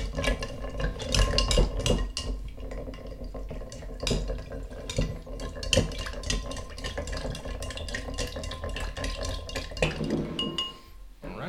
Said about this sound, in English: Well, so I'm going to take this, stir it up for a few seconds here.